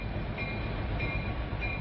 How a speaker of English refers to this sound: Oil tanker trains, 118 cars long, come and go at a shipping terminal.